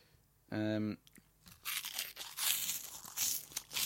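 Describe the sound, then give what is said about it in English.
A short hummed vocal note, then loud crunching of spicy-flavoured, hoop-shaped crisps being bitten and chewed, a steady run of crackly bursts lasting a couple of seconds. “This is the spicy flavour I'm trying now. Yeah. Just I'm going to try my first one.”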